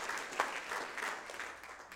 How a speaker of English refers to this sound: Would you clap your hand if you want to see that right now? Clap your hands to one together.